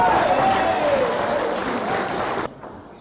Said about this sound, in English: Shall we all give Jesus a clap? Come on.